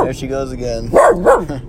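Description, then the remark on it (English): A corgi barks twice in quick succession, sharp, inside a car, following a drawn-out whiny vocalization. “I am sitting in the car with our crazy corgi.”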